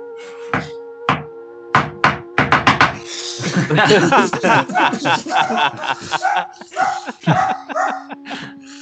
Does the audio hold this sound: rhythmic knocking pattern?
yes